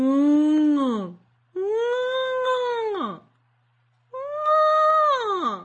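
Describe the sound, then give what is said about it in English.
A person voices a whale call: three long, loud wailing moans separated by short pauses, each holding a steady pitch, then sliding downward at the end. “Wait, can you do a whale noise?”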